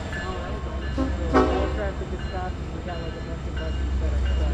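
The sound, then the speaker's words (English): A train rolls slowly past next to the closed I-84 highway, its heavy low rumble steady throughout, with wheel and car noise swelling briefly in the middle and faint indistinct voices in the background. “So we have an exciting moment as a train comes through next to I-84.”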